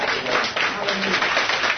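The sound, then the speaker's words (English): An audience claps hands together in a dense, steady burst of overlapping claps, loud and sustained throughout, with a wash of crowd noise mixed in. “Clap them hands right there.”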